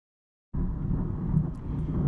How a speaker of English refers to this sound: So when we hear thunder like this, it's a real reminder to us of what energy really is, and we can hear it and see it with our senses. So the lightning we can see with our eyes, and the thunder we can hear with our ears.